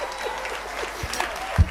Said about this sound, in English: God, you can clap for Jesus.